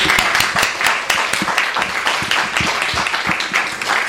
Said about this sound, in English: Let's give a warm round of applause to this program at Otis.